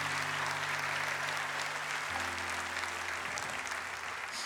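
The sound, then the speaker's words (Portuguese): A church audience applauds for Jesus in a dense, steady wash of clapping that keeps up for several seconds, while a sustained low keyboard chord plays underneath and shifts to a new note partway through. “Aleluia, se for para aplaudir, aplaude de verdade, irmão.”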